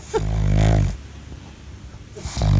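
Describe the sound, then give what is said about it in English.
A pug's heavy, snorting snore as it lies on a couch: a long raspy inhale-exhale, a brief pause, then another rough breath starting, fairly loud with no one speaking. “It's a cute little dog, but he sounds like that at best. That's him when his sinuses are clear.”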